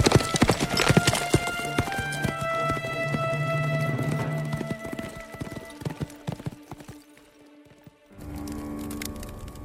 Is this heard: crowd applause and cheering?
no